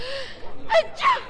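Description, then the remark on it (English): A sneeze in two quick parts: a breathy, rising intake followed by a sharp, noisy burst, fairly loud against a faint background hum, with no talking. “Gesundheit.”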